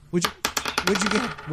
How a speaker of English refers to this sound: Give me another dice roll. Give me another dice roll over here, okay?